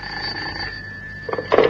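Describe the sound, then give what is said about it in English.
A telephone bell at the Assignments Unlimited office rings in one sustained, high metallic trill, steady and fairly loud, then breaks off into a short burst of clatter at the end. “And then the telephone rang.”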